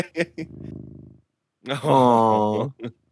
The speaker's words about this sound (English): So that was the last thing that was said, was oh my God, cat purr.